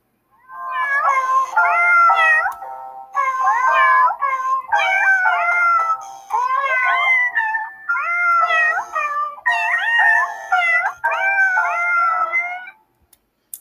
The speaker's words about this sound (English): Oh boy, we appreciate the cat singing happy birthday to us this morning. What a special song.